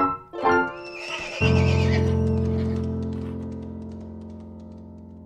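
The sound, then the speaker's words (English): A horse whinnies loudly in a shrill, quavering burst as horses run away along a road, followed by a deep, steady rumble that slowly fades over several seconds. No one speaks. “With the horses running, he was dragged along the road.”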